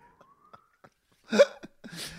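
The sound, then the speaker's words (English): A faint ambulance siren wails with a slowly rising tone in the background, followed by a couple of short, louder bursts of noise. “I think that's an ambulance that I can hear in the background.”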